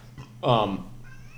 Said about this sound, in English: Other meow. I think we have a little kitty guest here